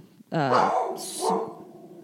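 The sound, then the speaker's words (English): A female dog barks, one drawn-out, harmonic bark with a rough, growly edge and a short hissy burst, then it trails off into quiet. “So she's barking because she's pissed the dog didn't do better.”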